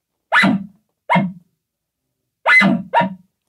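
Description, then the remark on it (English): Four loud barks blown by a man through a beagle call tube, mimicking a dog: two single barks spaced apart, then a quick pair, with silence between and no talking. “He's barking through his beagle tube.”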